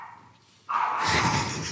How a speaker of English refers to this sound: I heard that dog bark in my life. She is, she hates it.